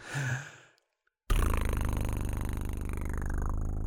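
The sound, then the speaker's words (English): A short breathy sigh, a moment of silence, then a prize wheel spins with loud, rapid, evenly spaced clicking ticks that keep going steadily to the end. “Let's roll the wheel.”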